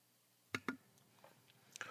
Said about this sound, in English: I'm chewing chips, so I apologize, but I have something really important to say.